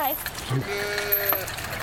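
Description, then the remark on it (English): A single drawn-out sheep bleat, wavering and nasal, lasting under a second, from a herd of sheep guarded by an alpaca, with faint voices and outdoor background noise around it. “So what will you do with the sheep?”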